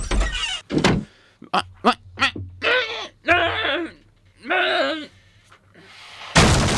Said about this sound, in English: Who are you? Why did you kick our door in?